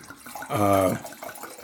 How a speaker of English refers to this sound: So we are going to pour. We are going to decanter through an aerator.